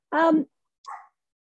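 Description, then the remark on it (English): Two barks from the speaker's dogs: a strong, full bark followed half a second later by a shorter, quieter one, with silence afterward. “There goes the dogs. I told you I have dogs.”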